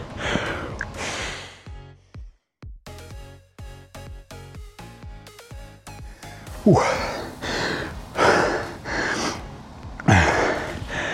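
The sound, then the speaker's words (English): Heavy, labored panting after exertion during a rowing workout: loud gasping breaths that come in a steady rhythm, with a brief quieter stretch of faint tonal sound between them. “My breathing is getting a lot harder to catch.”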